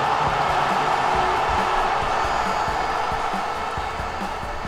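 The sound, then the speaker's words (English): A crowd cheers wildly as a player scores in a ball game, a loud, continuous roar that holds steady for the whole few seconds, a dense wash of many voices with no single speaker standing out. “Everyone in the crowd goes crazy.”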